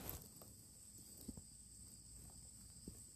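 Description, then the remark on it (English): A quiet outdoor night ambience with a steady high, thin insect drone, like crickets chirping continuously, plus a few faint soft knocks and shuffles. “The crickets, or the whatever they are. It's nice.”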